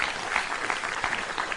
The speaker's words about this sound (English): Give Paul a mighty clap offering for a great example. Amen.